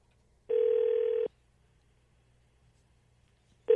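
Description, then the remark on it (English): A telephone ringback tone sounds on an outgoing call: one steady buzzing ring lasting under a second, a pause of silence, then the next ring starting. Clear, no voices. “All right, so we're going to get Austin on the phone.”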